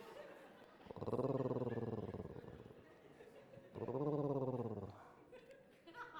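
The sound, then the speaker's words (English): Cat purring in two long, loud rumbling bursts, each about a second or more, with a buzzy, rapidly pulsing texture and a brief quiet pause between them. “Listen to the sound of a cat purring.”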